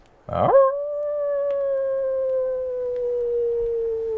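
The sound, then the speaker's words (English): A single long animal howl rises quickly, then holds a steady, slowly sinking tone for several seconds, sounding far off, with no voices around it. “You all hear a distant howl.”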